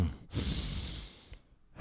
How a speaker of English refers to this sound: I like to give it a good sniff.